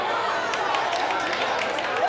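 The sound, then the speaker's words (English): A large group applauds steadily, a dense wash of many hands clapping at once, mixed with a faint background murmur of voices, sustained evenly throughout. “Look, y'all just clapping and smiling.”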